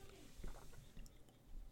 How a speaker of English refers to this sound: I didn't mean to get quiet. We just both took a sip at the same time. We didn't coordinate our sips there. Yeah, that was a non-coordinated sip.